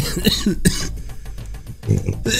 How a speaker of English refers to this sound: Last I heard, was it a little burp? Yeah, sorry, dude. I tried to do it away. But this mic, I was picking everything up.